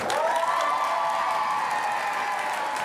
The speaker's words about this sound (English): Did you hear me say that? They were cheering. I couldn't tell.